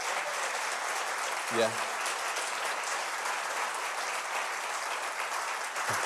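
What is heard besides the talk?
audience applause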